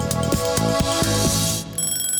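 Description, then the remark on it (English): A quiz timer goes off with a loud electronic jingle, several bright pulsing tones in quick rhythm lasting about two seconds, with no one talking over it. “Timer's up.”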